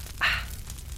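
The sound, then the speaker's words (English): A fireplace gives one short burst of crackling hiss that quickly fades into a low, steady rumble. It is fairly quiet, with no voices. “It is a wonderful time for a nice campfire. Or fireplace. Or fireplace, either. Either way. There it is.”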